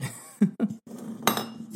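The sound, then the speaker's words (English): Glassware clinks as a drink is poured into a glass cup: two quick knocks, then a steady low pour-like rush with a sharper, bright clink partway through. Moderately loud, with no talking. “All right, about to pour my cup here.”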